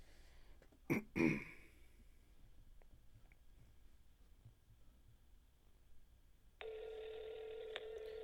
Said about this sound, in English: All right, so I'm going to call them right now. Right. They are now on speakerphone.